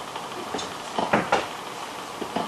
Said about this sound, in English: That's my knock on the wall. See if you heard it.